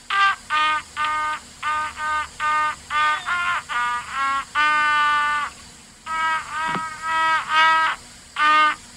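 A solo trumpet plays Jingle Bells, a bright, brassy melody of short repeated notes broken by a few longer held tones, loud and alone with no talking.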